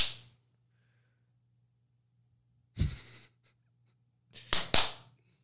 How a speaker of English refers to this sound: I always put the claps in.